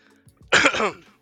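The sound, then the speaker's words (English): A single loud, rasping throat clearing, a short harsh burst that trails off quickly, with no talking. “We'll just clear my throat.”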